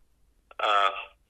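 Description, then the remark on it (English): A loud, buzzy electronic call-waiting beep from an incoming call on a phone line lasts about half a second, preceded by a faint click, with a steady harmonic-rich tone that fades out at the end. “Okay, I heard a loud beep.”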